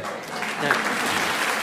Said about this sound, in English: It's just an applause for the fun runner.